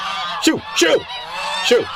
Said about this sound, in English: Okay, guys, all right, get the geese out of here. Geese, get out of here.